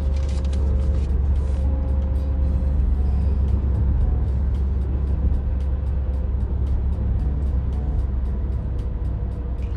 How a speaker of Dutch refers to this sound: Je zit gewoon in de auto, je maakt wat foto's. Je rijdt weer door, je zit weer in de auto.